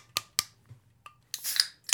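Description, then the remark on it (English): A can of Guinness being cracked open: two sharp metallic clicks, a faint tick, then a rush of hissing, fizzing pour over a low steady hum. No one speaks. “It's time to crack open a Guinness. Pour.”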